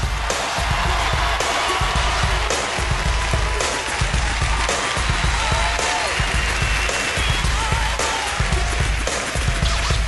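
Steady audience applause as Bernie Mac comes out on stage, a dense, even wash of many hands clapping at constant loudness, with faint crowd voices mixed in beneath.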